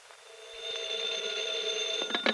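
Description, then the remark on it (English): A telephone rings with a steady, bright electronic tone that holds for a couple of seconds at moderate volume, ending in a short clatter as if the receiver is picked up. “I promised to phone you this evening, remember?”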